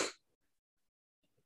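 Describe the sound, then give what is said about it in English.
A single sharp, breathy cough bursts out at the start, then fades into near silence with only a few faint, low murmurs afterward. “And then right as I had to talk, I, like, coughed.”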